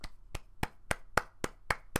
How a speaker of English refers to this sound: Fucking applaud as usual.